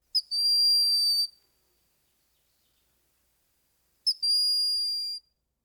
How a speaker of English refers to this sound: And then there is the broad-winged hawk, whose call, like that of its relatives, is non-imposing. But it is also very unhawk-like.